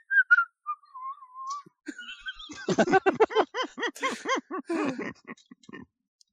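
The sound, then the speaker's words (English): A short, casual whistled tune with a few sliding notes, clear, followed by a quick run of rhythmic, pitched vocal sounds before it fades out. “Oh, here's one titled Innocent Whistling.”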